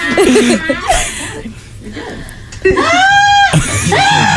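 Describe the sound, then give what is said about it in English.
Cardi B lets out loud, shrill screams while getting her tongue pierced, wavering and strained at first, then a long sustained high-pitched shriek that rises and falls before another cry begins. “That's Cardi B getting her tongue pierced.”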